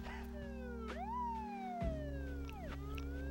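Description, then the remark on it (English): Police sirens wail outside, their pitch sweeping up and down in long repeating glides over a steady low hum, moderately loud and continuous with no one speaking. “Remember, I had one version where you didn't even hear the sirens right. or the cars outside, but I think it's good that we do.”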